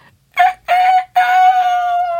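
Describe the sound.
A person imitates a rooster's crow: a loud, three-part cock-a-doodle-doo with two short bursts and a long held final note, no other sounds around it.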